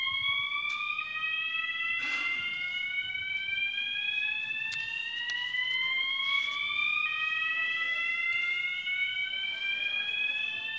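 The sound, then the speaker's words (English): A fire alarm, a false alarm caused by a short downstairs, sounds continuously, its shrill electronic tones sweeping slowly upward in pitch and layered together, steady and fairly loud for the whole stretch with no voices. “We'll see if that continues or is a false alarm.”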